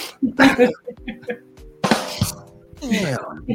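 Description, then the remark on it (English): A person coughs several times in harsh, throaty bursts spread over a few seconds, with rough voiced sounds and short pauses between them. “No, it's this cough. It's bothering me.”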